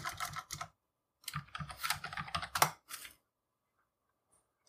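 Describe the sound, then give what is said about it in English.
Quick bursts of computer keyboard typing as someone types a back-to-school search on a shopping website: a short flurry, a pause, then a longer run of rapid key clicks, fairly quiet, before falling silent. “I'm actually going to do a search here and do change back to school.”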